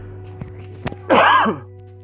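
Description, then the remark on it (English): A single raspy cough lasting about half a second, preceded by a couple of faint clicks, with a steady low hum underneath and no talking. “I am coughing a bit, but it's okay.”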